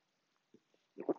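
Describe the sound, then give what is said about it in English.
A quiet sip of coffee: a few soft, wet slurping blips, then a louder gulping swallow at the end, with no talking. “Coffee sip.”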